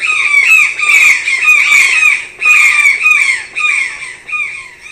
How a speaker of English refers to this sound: Toucans are birds with huge, colorful beaks. They live in rainforests in Central and South America. Toucans have a very bendy spine, so they can wrap themselves up into a ball when they go to sleep. This is what they sound like.